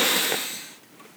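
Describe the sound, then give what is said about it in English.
A single sniffle from someone with something in their nose: a short, breathy rush of air through the nose that fades out within about a second, with no talking. “Is that you sniffling or like... There's something in my nose.”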